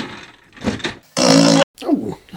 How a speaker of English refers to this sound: Some of the chairs are fitted with a whoopee cushion that does that farting sound from CJ's office in the Reggie Perrin series.